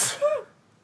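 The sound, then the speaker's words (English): A single quick sneeze, a sharp breathy burst trailing into a short voiced tail, then quiet. No talking. “bless you. Bless you.”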